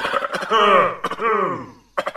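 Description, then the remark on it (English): A nasty, rasping cough repeated three times, each fit opening with a harsh burst that drags into a strained, groaning vocal tail, loud with short pauses between. “Oh, that cough sounds nasty.”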